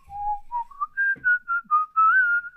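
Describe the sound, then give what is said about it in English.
A clear, loud whistled melody, the opening theme of the film Lone Wolf McQuade, also used as a whistle to call a cat, rises in steps from a low note to a higher sustained line, with short phrases and slight wavering, played alone without talk. “And we were like, oh my gosh, this is this like really unique whistle.”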